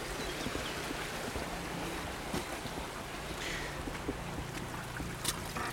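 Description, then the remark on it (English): A steady, continuous rush of flowing river water fills the scene, fairly even in loudness, with occasional faint splashes and no voices. “Leaving the river now”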